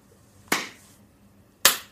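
Two sharp hand claps about a second apart, made as a sync marker for a recording, each a crisp, bright crack with a brief ringing decay, standing alone against quiet background hiss with no talking.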